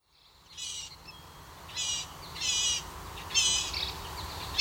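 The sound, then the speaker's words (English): Blue-gray gnatcatcher, a small, dainty songbird with a long tail, calls: four thin, buzzy, high-pitched notes spaced roughly evenly, each a short wheezy burst, over a low steady background hum with no talking. “That's how many describe the vocalizations of the blue-gray gnatcatcher, a small, dainty songbird with a long tail.”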